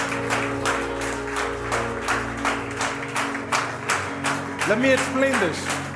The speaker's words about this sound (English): Demons are fleeing every time you clap. Because your praise is powerful. Your praise is powerful. God's people, come and clap your hands.